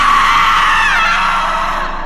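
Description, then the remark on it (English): A loud, piercing, blood-curdling scream from a woman, sustained for about two seconds, harsh and strained, its pitch sliding slightly downward before it trails off at the end with a wet, choking sound. “the woman's eyes spring open and she lets out a blood-curdling scream”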